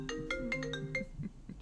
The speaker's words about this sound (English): You get phone calls on your computer? Yeah. Yeah, because my computer's on mute.